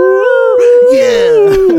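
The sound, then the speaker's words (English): A person imitates a wolf howl with one loud, sustained tone that slides gently downward, roughened by breathy noise, lasting nearly two seconds. “Change your radio station. Different howls.”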